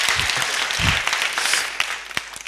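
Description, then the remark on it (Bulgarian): A crowd applauds steadily for a couple of seconds, a dense, hissy patter of many hands with a few sharper individual claps standing out near the end. “Тук може вече някой, който искаше да пляска.”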